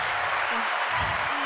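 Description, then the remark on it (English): A short burst of steady, dense clapping, a continuous crackling wash of many quick hand claps at an even, fairly loud level throughout. “And so let's clap that up.”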